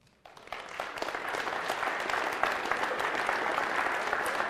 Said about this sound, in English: The musicians, if you are a musician and you have helped us worship, will you please stand up? Because we're going to clap for you as well.